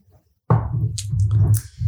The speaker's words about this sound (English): All right, I'm just going to rinse this glass out here quickly.